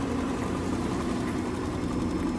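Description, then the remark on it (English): The engines of the large ship Nagato Maru idle with a steady, deep rumble and a constant low vibration, ahead of a speed run to Osaka. The drone stays even and fairly loud throughout, with no voices. “Another 5 minutes and the great beast would engage its autonomous engines for a speed run to Osaka.”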